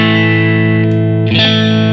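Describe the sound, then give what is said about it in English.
A sustained, distorted electric guitar chord rings out steadily, with faint clicks as the pickup selector is flipped through in-between tones using two pickups at once and the tone turns brighter, while the volume stays level with no dropout. “And for guitar players, you'll know what I'm talking about, because when you go through some of these in-between tones, when you're using two pickups at once, the volume drops. But on this one, listen.”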